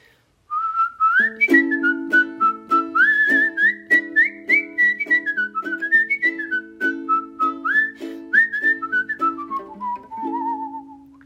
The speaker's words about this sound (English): And were you just playing the ukulele there with your whistling? I was playing the ukulele. You know, the ukulele is so great because it's also a teeny tiny instrument, and I think it sounds really nice with whistling as opposed to a big instrument,